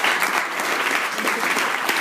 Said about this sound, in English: Let's have a round of applause for him.